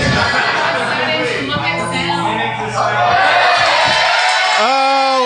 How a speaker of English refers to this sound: They can hear it. Your cheers are outweighing the noise.